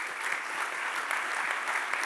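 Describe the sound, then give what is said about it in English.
A church audience applauds steadily to honour a man for community service work, a dense wash of many hands clapping at an even, moderate level without any voices over it. “And I just want you to clap for him really quickly.”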